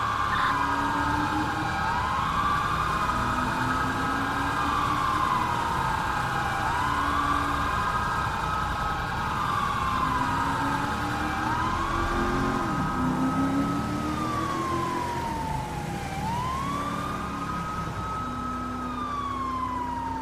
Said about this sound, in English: That was... God damn, so much fucking siren.